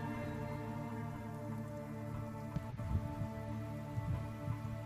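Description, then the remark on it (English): Steady rain falls in a continuous soft patter, with a few louder drops landing near the end over a low, sustained droning hum. No one speaks. “Fortunately for you, the clouds and the rain keep flying creatures at bay right now.”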